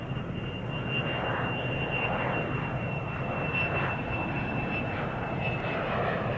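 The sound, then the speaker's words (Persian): An airplane engine drones loudly and steadily throughout, a dense roar with a thin high whine riding on top and gentle swells as the aircraft turns to the right and flies a full circle while preparing to land on a runway. No voices. “هواپیما رو به سمت راست چرخوند و یه دور کامل زد.”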